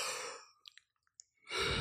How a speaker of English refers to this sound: All right, I'm done. That was good. Such a fake yawn. No, it was real.